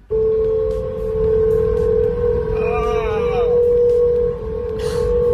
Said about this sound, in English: The strange new hum that can be heard from the Golden Gate Bridge. This was happening over the weekend. Very windy it was in San Francisco, and you could hear this noise all over the city.